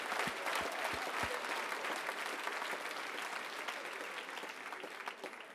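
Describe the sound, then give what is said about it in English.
A crowd of people claps their hands to God after a prayer, in sustained, dense applause, steady and fairly loud throughout, with a few sharp low thumps near the start. “Would you clap your hands one more time to God?”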